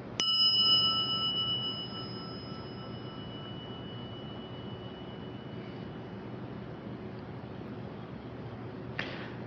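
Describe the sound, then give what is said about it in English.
A single bell is struck once and rings out with a clear, bright tone, its sustain slowly fading over several seconds above a low steady rumble, with a faint second tap at the end. “And if we're using the bell as a metaphor, it's kind of listening to the sustain.”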